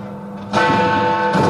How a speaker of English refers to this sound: Is that actually Big Ben? That is Big Ben. They fixed it.